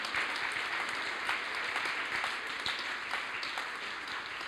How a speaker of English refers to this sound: Oh, I think if God's ever done anything for you, you ought to jump on your feet and clap your hands and thank him for his goodness, for his mercy, and for his grace. Hallelujah.